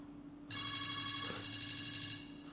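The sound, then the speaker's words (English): A telephone rings with a steady, bright electronic trill that starts abruptly and continues without a break, fairly loud over a low background hum, with no talking. “It's the phone ringing.”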